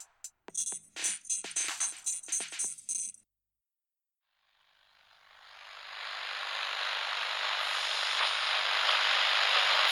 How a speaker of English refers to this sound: Turn your dial to the edge of the radio static.